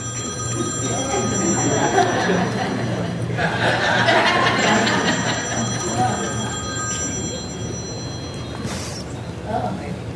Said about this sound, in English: It's not like, you know, during campaign season, your phone's ringing off the hook. You can't even have dinner because of all the phone calls that are coming. But imagine tonight if you got a call from the President of the United States.